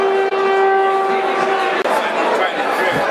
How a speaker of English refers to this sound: That was a passing train, I think.